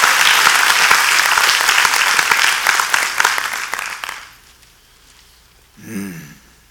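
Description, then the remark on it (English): An audience claps steadily in dense, loud applause that fades out after about four seconds, followed by a brief rising voice sound near the end. “I'll wait for everybody to clap their hands.”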